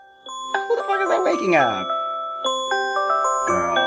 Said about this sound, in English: I had 4 alarms with this stupid ass ringtone. This ain't gonna wake up shit.